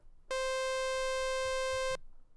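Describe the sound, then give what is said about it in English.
A synthesized sawtooth wave tone holds one steady mid pitch for about a second and a half, harsh and buzzy with rich overtones, starting and stopping abruptly with no voices. “Okay, so let's hear a sine wave, then a sawtooth wave, then a square wave.”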